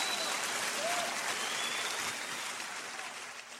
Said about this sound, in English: Nick Offerman, round of applause. Just, you did it. You killed it.